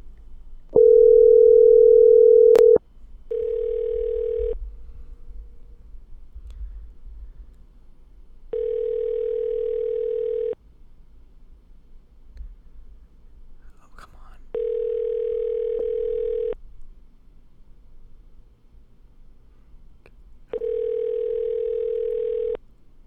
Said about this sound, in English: Are you kidding me? This is not. We gotta get somebody to pick up the fucking phone.